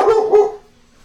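A dog barks twice in quick succession, loud, each bark sharp and throaty, then the sound fades into quiet.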